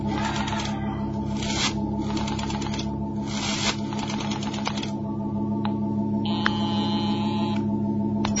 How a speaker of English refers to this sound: I looked at the gun in Conover's hand, then I reached for the phone and dialed. Slow. He didn't stop me.